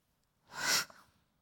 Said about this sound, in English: That was a wimpy sneeze.